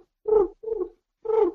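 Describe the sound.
A person imitates a pigeon's coo: three low, throaty, warbling hoots, the middle one shorter and softer, with brief pauses between. It is moderately loud, and there is no other talk.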